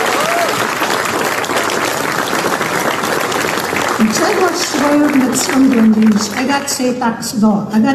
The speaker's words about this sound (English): I want you to give them a round of applause for everything that they do.